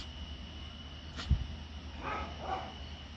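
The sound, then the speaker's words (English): A dog barks twice outdoors, faint and muffled, the two barks about half a second apart, shortly after a single soft knock. No one speaks. “And I might pause a little bit because this dog is barking a little bit.”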